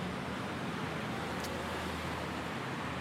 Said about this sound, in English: And as you can hear, I'm now back in traffic.